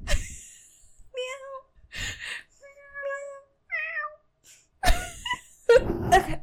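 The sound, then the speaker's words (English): Several people imitate cats, trading short, drawn-out meows that overlap into a ragged chorus, with breathy noises and a louder, messier burst of meowing near the end. “We all just meow and in chorus.”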